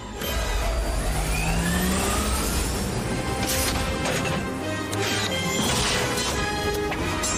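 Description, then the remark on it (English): A car crashes and smashes loudly in a Batman movie, with a roaring engine under a continuous wall of crunching metal and several sharp impacts throughout. No one speaks. “Of course, the car would be completely demolished at this point.”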